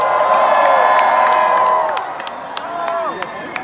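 A large crowd at a concert cheers and shouts loudly, a dense roar of voices with high whoops rising above it, easing slightly partway through while scattered sharp claps and yells continue.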